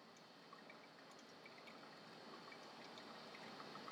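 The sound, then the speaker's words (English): A steady final pour of 75 grams of water, bringing the total to 224 grams at 1 minute 20 seconds, onto coffee grounds in a filter, a soft, continuous trickling hiss that holds evenly for several seconds, fairly quiet, with no talking. “Here at 1 minute 20, my last pour.”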